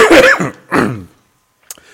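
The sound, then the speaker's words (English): Two harsh bursts of coughing and throat clearing in quick succession, then quiet except for a brief faint click near the end. “Are you going to edit all your coughs out later?”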